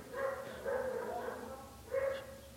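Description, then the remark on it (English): A dog barks in three drawn-out, tonal bursts, the middle one longest, at moderate volume with no one talking. “Goddamn Cujo.”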